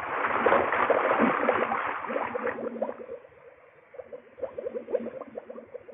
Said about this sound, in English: Slow it was. I sunk down through that green water. The only sound was the air bubbling out of the helmet valve.